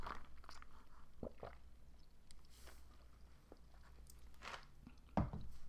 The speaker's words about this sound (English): Ew, did you just hear me gulp? I'm sorry. I'm out of practice.